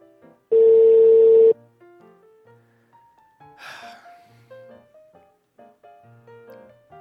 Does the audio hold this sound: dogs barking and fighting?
no